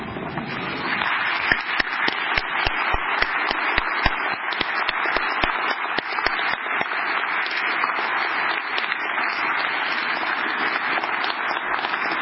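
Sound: audience applause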